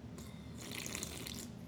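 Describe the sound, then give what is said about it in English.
A wet, hissing slurp of Red Bull drawn from a can, swelling in the middle and fading out over under two seconds, fairly quiet with no voices. “We didn't sign up for ASMR Red Bull slurps.”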